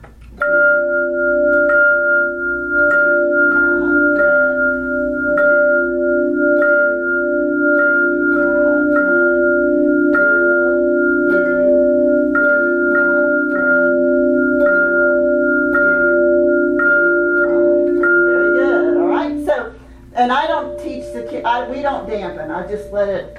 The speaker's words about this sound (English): But anyway, well, you put the B section on hand chimes.